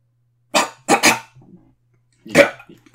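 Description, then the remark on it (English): A few short, harsh coughs from a person with something in their throat break an attempted moment of silence: a single cough, then two in quick succession, a soft throaty rumble, and after a pause one more loud cough. “You coughed.”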